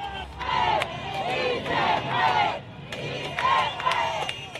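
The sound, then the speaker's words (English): A large protest crowd, with defecting soldiers wearing blue armbands, on a motorway overlooking a military air base in central Caracas shouts and chants together in surging waves, loud, rhythmic bursts of massed voices rising and falling, with scattered higher yells and sharp clatters cutting through the din. “And the crowds grew and grew.”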